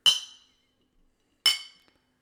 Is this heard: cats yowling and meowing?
no